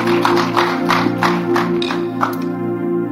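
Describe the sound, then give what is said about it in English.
An audience claps in a steady rhythm, about three claps a second, as a clap offering to the Lord, over a sustained keyboard chord. The clapping stops near the end, leaving the held chord alone. “Give the Lord a clap offering if you receive that.”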